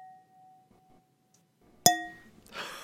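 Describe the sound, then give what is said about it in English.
A single bright clink of glasses touching in a toast, ringing briefly with a clear tone, followed by a soft rustle. “I guess we cheers for Alissa”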